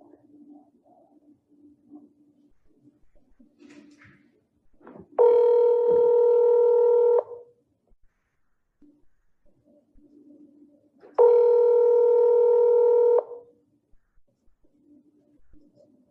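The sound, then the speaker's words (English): An outgoing phone call's ringback tone, recorded on December 8th at 3:43 p.m.: two loud, steady electronic rings about two seconds each, separated by a few seconds of quiet line with faint background murmur. “So here goes the phone call.”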